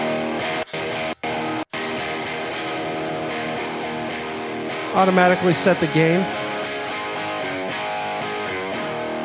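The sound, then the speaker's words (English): A short burst of gritty, distorted electric guitar played through a Marshall guitar amp, with bent notes ringing out for about a second amid steady amplifier hiss, while a man talks before and after it as he sets up the amp. “So what I like to do is do auto set, and then I'll just have Dallas start playing.”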